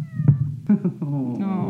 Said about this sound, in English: We'll see if that picked it up at all. The saddest little meow. I don't know if you could hear that, but...